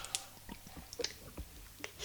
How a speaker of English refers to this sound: Yes, this is real life because you're hearing the water go down.